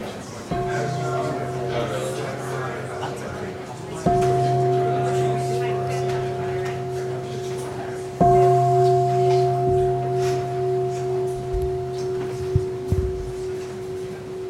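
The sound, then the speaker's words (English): A meditation bell is struck three times, about four seconds apart. Each clear, resonant strike rings on with a long sustained hum that is still sounding when the next one lands. “So please say hello to as many people as you can, and I'll ring the bell in a couple of minutes.”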